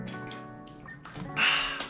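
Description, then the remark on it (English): Someone drinks water right against the microphone, with wet gulping and swallowing sounds and a louder breathy slurp near the end. “I love, man, don't you just love the professionalism of me just drinking water in your face or in your ear like a fucking weirdo?”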